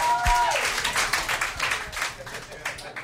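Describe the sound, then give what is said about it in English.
An audience bursts into a round of applause, dense and steady clapping lasting about three seconds, with a brief vocal whoop at the start before the clapping carries on alone. “Round of applause right now.”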